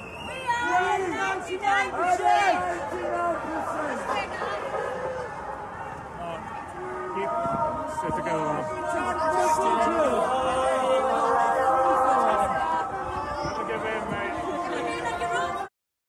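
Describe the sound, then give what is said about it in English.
A large crowd filling blocks and blocks of a street murmurs and chatters continuously, many overlapping voices forming a steady, dense hubbub that stays loud throughout before cutting off abruptly at the end. “That's a pretty good crowd. That up and down the street, there's blocks and blocks and blocks of people.”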